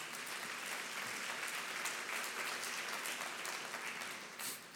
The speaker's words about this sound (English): Let's give the Lord a hand clap for that, church. God's good.